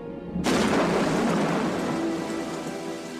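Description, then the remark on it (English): Heavy rain starts abruptly and pours steadily in a dense, hissing wash, with a deep rolling rumble of thunder underneath. No voices. “This would have been a perfect time for it to start raining.”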